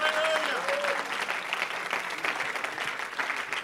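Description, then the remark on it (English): An audience claps their hands unto the Lord in a dense, sustained burst of applause, loud and continuous, with a few raised voices and a brief sustained tone near the start. “Clap your hands right now unto the Lord.”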